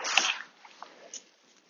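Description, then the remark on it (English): A stone tossed onto a pile during stone clearing strikes the rock pile with a sharp, hissing crack but gives no spark, then a few quick, fainter clicks as it bounces and settles, with no one talking. “That one didn't spark. It did bounce around on the pile, found its place.”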